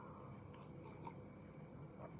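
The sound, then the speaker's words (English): A few faint mouth sounds as someone sips coffee, soft slurping and swallowing spread over a couple of seconds against quiet, with no talking. “So let's take a sip of coffee.”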